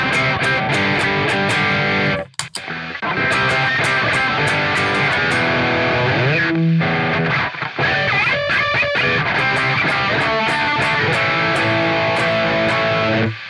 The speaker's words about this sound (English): But now I've got a little less gain on the tube amp, okay? So this is sort of a crunch... Yeah. It's not the lead channel. It's the distortion, but not the lead channel, and the gain's not that high on the angle.